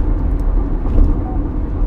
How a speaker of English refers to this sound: I'm in my car, by the way.